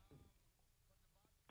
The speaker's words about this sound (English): Are you aware that throughout this entire phone call, you keep accidentally pushing the numbers on your phone?